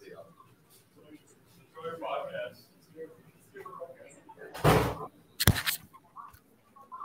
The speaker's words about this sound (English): Sorry to just leave like that. Someone just slammed on my door and ran away.